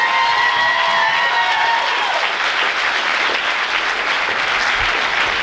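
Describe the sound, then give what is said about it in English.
A crowd applauds the roller Derby girls, past, present, and future, steadily and loudly for several seconds, the clapping dense and continuous, with a few high whistles or cheers rising over it at the start. “Big round of applause for all the Derby girls, past, present, and future.”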